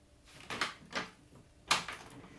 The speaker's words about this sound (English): The door began to open